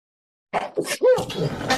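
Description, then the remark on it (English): A loud sneeze: a few sharp, catching breaths build up, then a forceful, breathy burst erupts, with a brief voiced squeak in the middle. “Oh, no, I need to sneeze.”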